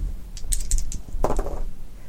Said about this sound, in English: All right, roll the dice.